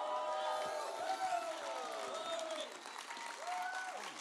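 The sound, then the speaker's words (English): A crowd cheers and applauds steadily for Jesus, with scattered whoops and shouted voices rising over a dense wash of clapping. The noise stays loud and continuous throughout. “Why don't you give Jesus some cheer for that, man?”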